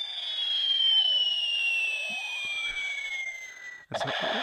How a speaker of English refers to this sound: I thought it was an airplane, but it was a bomb.